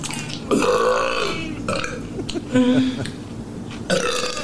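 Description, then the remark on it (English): A woman eating a pickle lets out several loud, drawn-out burps, three or four croaky belches in a row with brief pauses between them and no talking. “She's eating a pickle while she burps here.”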